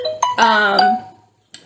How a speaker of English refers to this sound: Sorry, IG, I did not mute my phone, so now all these notifications are coming up.